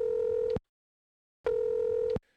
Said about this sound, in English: We'll dial them up on my cellular phone here. Let's see. I'll punch the number in here. And all right, let's see what's up.